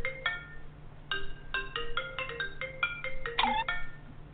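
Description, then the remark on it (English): A bright electronic melody of quick, clean tones in a bouncy rhythm, played fairly loud over a steady low hum, with no one talking. “Let's go ahead and play a song”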